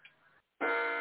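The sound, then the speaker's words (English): Several clocks go off: a loud, steady electronic alarm tone starts abruptly after a short silence, sustained, preceded by a fainter, muffled sound. “you can hear all my clocks are going off.”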